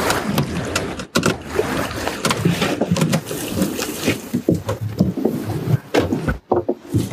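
A wooden fishing boat rocks on the water, its hull creaking and knocking in irregular bursts over a steady wash of lapping water, fairly loud, with no voices.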